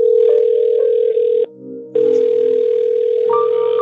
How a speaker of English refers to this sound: Well, it's been a while since the phone rang, but I thought it's been a while. I thought I heard their phone ringing.